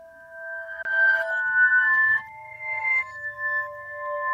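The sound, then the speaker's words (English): A music box melody played in reverse: bright chiming tones swell and hang in long sustained layers, then cut off abruptly, giving a smeared, eerie backward sound with no voices. “They're all music box renditions.”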